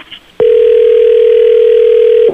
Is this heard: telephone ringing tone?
yes